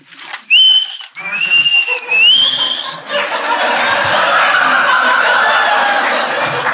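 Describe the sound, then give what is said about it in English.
A person whistles a short, high tune in two quick phrases, the second sliding upward, clear, in a living room, followed by a few seconds of rough, breathy background noise. “I just whistle.”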